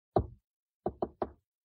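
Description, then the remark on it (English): Knocking on a door, fairly loud: one solid knock, a short pause, then three quicker knocks in a row, with no voices. “Just knock like that.”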